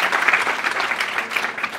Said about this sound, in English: Clap it up for his hustle.